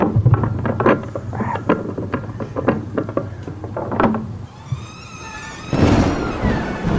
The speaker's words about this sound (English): We need somewhere to stay until the storm passes.